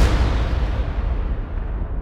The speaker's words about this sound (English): So, see a nimble gunner, torch in hand, igniting the devilish cannon, and down goes all before them.